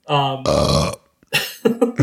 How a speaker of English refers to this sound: The burp was not it.